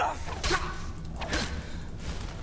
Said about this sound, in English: Oh! Ha-ha! Trounced, and we even got the explosion from Dawnbreaker. That was fantastic. That was neat.